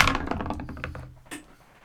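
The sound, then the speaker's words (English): A new set of dice, rolled for a dish in a game, clatters across a hard tabletop in a quick burst of small, sharp knocks that thin out and settle within about a second and a half, with a last light tap at the end. “For the audience, this is a new set of dice.”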